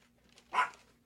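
A dog lets out a single short, sharp bark or yelp after being hit with a rolled-up piece of paper, standing alone against a quiet background with a faint steady hum.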